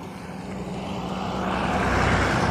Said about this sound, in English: Hold on, the school bus is coming back again. Because that's what this bus does, they're weird.